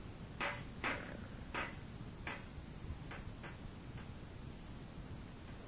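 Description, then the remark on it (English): A rock hammers a bent metal grate for a fire, straightening it out, in about seven sharp, irregular knocks, the first three loudest and the rest fading, all over a steady hiss of background noise. “I'll set up the grate for the fire. It's a little bent. Oh, I can straighten it out with this rock.”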